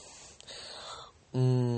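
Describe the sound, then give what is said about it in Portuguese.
A loud, low-pitched burp bursts out suddenly after a moment of faint breathy hiss, holding a steady, buzzing tone for about half a second. No one speaks. “Então, arrotei, cara.”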